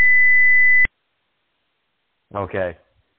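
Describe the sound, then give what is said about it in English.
A loud, steady electronic beep sounds on a phone line for almost a second, then cuts off abruptly; after a short silence, a voice speaks briefly. “It sounded like the emergency broadcast system warnings that we get at 2 o'clock in the morning on the television.”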